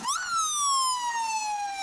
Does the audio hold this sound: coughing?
no